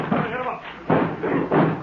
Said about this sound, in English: When I give the word, all of you rush at that door and break it in.